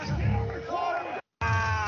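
A man in a concert crowd bellows and whoops excitedly as the live band plays a cover song, his loud, raw yells rising over the music and cutting off abruptly for a moment before the din resumes.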